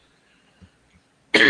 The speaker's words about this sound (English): Sorry, guys, I am coughing here like a maniac, but yeah.